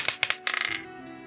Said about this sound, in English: Give us the goods. Roll those dice.